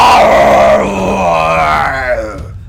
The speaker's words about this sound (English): Scream, death screaming right by the fucking microphone.